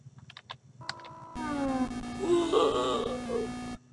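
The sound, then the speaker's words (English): A synthesized male voice from a 1978 balloon-popping circus video game mimics a man crashing into the ground at high speed: a few quick clicks, then a loud, buzzy wail with falling, wavering pitch that holds for about two seconds and cuts off abruptly. “some attempt, even in 1978, to do voice synthesis in a game, and it's kind of terrible that they chose a game where one of the sounds is going to have to be a man crashing into the ground at high speed.”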